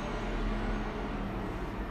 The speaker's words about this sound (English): I truly do apologize for the trucks in the background, folks. You honestly like to think a clear road, even if it is morning over here, people would not honk the horns or drive so loudly